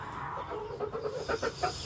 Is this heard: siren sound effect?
no